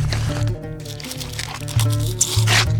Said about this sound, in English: The embalmer took up a small flint blade and sliced into the body's side. Though the sudden violence shocked Atikos, he found himself peering closer at the cut the man was making. It was carefully done, but the edges of the cut were ragged and torn.